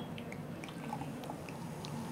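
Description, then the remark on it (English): 2015 vintage Eve's Cider Northern Spy cider pours into a glass with a steady, soft liquid rush, small bright splashes and fizzy pops scattered over it for a couple of seconds. No one speaks. “I'm just going to pour the 2015 now.”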